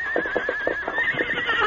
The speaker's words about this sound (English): Listen. Hey, a horse is nearby. That's Scout. Huh? Toto's horse.